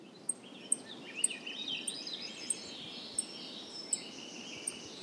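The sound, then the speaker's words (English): Birds singing at 5 a.m. on a spring morning in Glacier National Park: a steady series of sharp, high chirps repeating roughly twice a second over a softer warbling chorus, with no voices. “It's 5 a.m. The birds are singing.”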